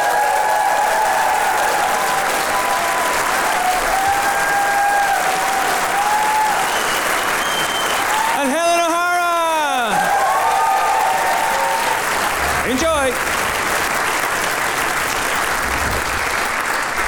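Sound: audience applause and cheering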